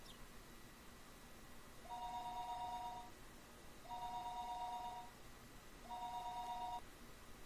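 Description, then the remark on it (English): A telephone rings three times in a steady pattern, each electronic two-tone burst lasting about a second with short pauses between, fairly soft over a low background hiss. “You have a phone call.”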